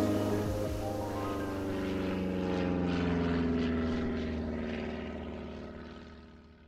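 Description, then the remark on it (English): A propeller airplane drones steadily overhead, its engine hum rich with low harmonics that swell and then slowly fade as it passes, with no voices present. “To get to the waterfalls, you have to go there with a plane.”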